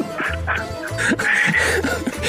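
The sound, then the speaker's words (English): A person imitates a rooster crowing, loud, with a few harsh, choppy squawking bursts over about two seconds. There is no other talking. “I can't do a southern rooster at all.”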